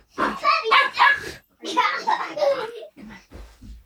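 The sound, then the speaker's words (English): A new puppy yaps in quick, high-pitched bursts at home, with a child's excited voice mixed in among the barks. “And my daughter's just got home and we have a new puppy.”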